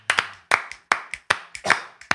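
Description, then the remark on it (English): Hands clap in a quick, uneven burst, about ten sharp, crisp claps over two seconds, often landing in pairs, with no voices over them. “let's clap out Shawnee P, dude.”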